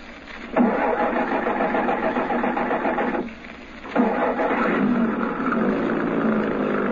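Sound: truck engine starting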